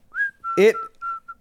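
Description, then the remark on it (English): A person whistles to call an animal to come in, a quick series of short, clear notes, starting with a rising tone and then several steady beeps, broken once by a brief voiced sound in the middle. “And I think you whistle at him to get him to come in.”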